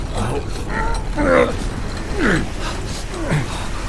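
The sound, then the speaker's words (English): A heavy gate grinds shut behind people who have just passed through it, with a series of drawn-out metallic creaks and groans rising and falling over a low continuous rumble, loud. “Rowena and Aias were able to drag Soren beyond the gate before it closed behind them.”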